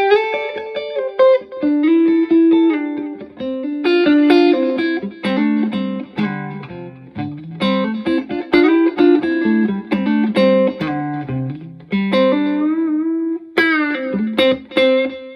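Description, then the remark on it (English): An electric guitar plays a flowing melodic line through an analog delay pedal, with delay feedback and level both set at 9 o'clock in a Reggie Young-style setting. Each note is followed by soft, short repeats that fade quickly, with a warm, slightly gritty tone and no talking. “all these settings have been the exact same delay time, but now I've changed the feedback is down at 9 o'clock and the level is down at 9 o'clock also.”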